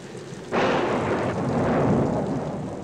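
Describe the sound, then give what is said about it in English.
Heavy rain starts abruptly after a brief quiet moment and continues as a loud, steady roar of noise, with a low rumble underneath and no voices. “They go outside to watch the rain”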